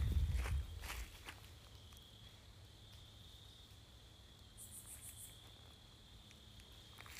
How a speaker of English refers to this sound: Well, that's some bugs and birds. We couldn't hear the church bells, could we?